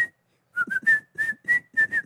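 person whistling a tune

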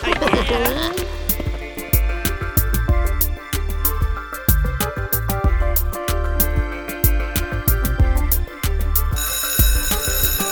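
school bell ringing

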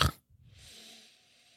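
sniffing whiskey

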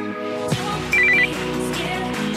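telephone ringtone ringing

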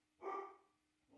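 dogs barking

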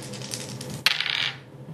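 three dice being rolled

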